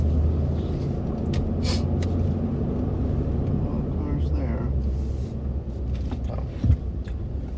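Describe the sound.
A car engine idles and rumbles steadily, a low continuous drone with faint shifting noises and a brief bump near the end, while a person speaks quietly over it as they re-park the car.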